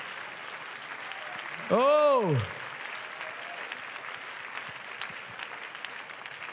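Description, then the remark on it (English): An audience claps steadily, a dense, even wash of hand claps that carries through the whole stretch, while one voice briefly calls out a long, rising-then-falling exclamation over it. “Oh, somebody clap your hands and bless the Lord.”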